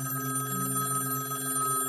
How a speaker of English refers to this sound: when the phone rang again.